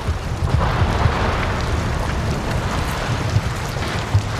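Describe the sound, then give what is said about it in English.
Ice pieces crack off the roof and fall inside an iceberg chamber, heard from close to its archway entrance: a continuous deep rumbling roar like a thunderstorm, with a rain-like hiss and echo, broken by a few louder thuds and cracks. No voices. “And you get this rain sound, but you get the echoing from the chamber of the iceberg, and as pieces crack off the roof and fall down, it creates this thunderous echo, which if you close your eyes, it sounds exactly like a thunderstorm.”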